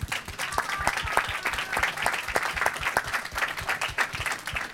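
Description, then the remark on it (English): An audience bursts into a steady round of applause for film producer Jan Harlan, Stanley Kubrick's brother-in-law, dense overlapping claps sustained at a fairly even level for several seconds with no talking over it. “This man that I'm referring to, Jan Harlan, is Stanley Kubrick's brother-in-law, and we just give him a round of applause.”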